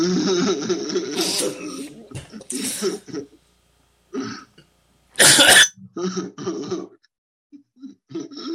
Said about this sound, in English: Apparently, I've sent my co-host into some sort of coughing fit.